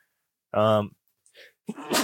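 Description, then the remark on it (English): A single loud sneeze: a sudden voiced "ah" swell, brief soft breathy sounds, then a sharp, hissing burst that cuts off abruptly. “Oh shit. Bless you.”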